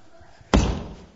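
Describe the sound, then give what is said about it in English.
A single heavy foot stomp on a ripped banknote lands with a sharp, loud thud, its deep low-end thump fading quickly into a short rumble after a quiet moment. “What if I stomped on it?”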